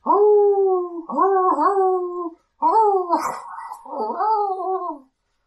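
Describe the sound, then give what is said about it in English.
Several excited wolf howls from a pack, heard in the distance, waver and overlap in loud, sustained bursts, pitch sliding up and down, with a short pause between the groups of calls. “Off in the distance, you can hear the sound of excited howling from what sound like wolves, a lot of voices near.”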